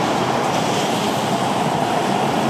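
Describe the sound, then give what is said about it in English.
A steady, full wash of water sound in a video game's 3D environment, like waves lapping and surging, continuous and fairly loud with no distinct breaks and no voices. “And the water here.”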